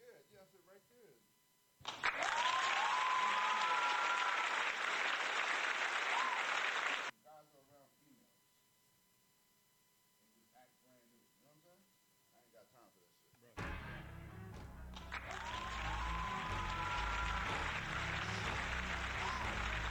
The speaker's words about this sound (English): Put the applause.